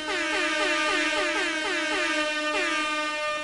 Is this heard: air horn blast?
yes